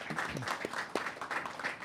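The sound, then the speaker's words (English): An audience claps and snaps steadily, a dense patter of many hands with a few sharper cracks standing out, and a brief murmur of voices underneath early on. “I think it's safe to say for the rest of this clap, snap, whatever it is, but audience participation is great.”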